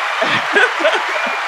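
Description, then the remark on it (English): A brief burst of hands clapping fills the moment, a dense steady patter, with voices murmuring and chuckling underneath. “Yes, clap it up for that.”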